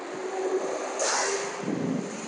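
A loud truck rumbles past on the street, a steady roar of engine and road noise with a hissing surge in the middle and a deeper rumble toward the end.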